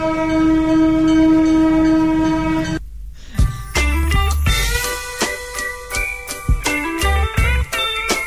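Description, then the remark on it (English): An East Portland Traction Company (Oregon Pacific) train horn blares with a steady harmonic tone for nearly three seconds, then the loud rumble and clanking of the train rolling past, with rhythmic thumps from the cars. “Hey, do you know what that is in the background? Oh my God! It's the East Portland Traction Company! Oregon Pacific, I can't believe it!”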